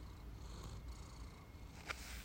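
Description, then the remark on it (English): A cat purrs steadily in a soft, continuous low rumble at the microphone, with a brief rustling bump near the end as the cat rubs on the mic, and no voices. “I'm trying to get it so that you guys can hear Shohei purring.”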